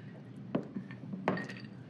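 Drinking glasses clink together twice in a toast, two bright taps about a second apart over a low room murmur.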